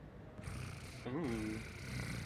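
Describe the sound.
A cat, Emperor Cosmos, purrs in a low, steady rumble, broken briefly by a short rising and falling voiced tone partway through, with no words spoken.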